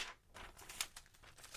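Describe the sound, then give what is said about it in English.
Paper crinkling and rustling as a pad of paper with writing in it is handled in quick irregular bursts, with a sharper crackle near the middle, quiet and with no voices. “It's like an ordinary pad of paper to me.”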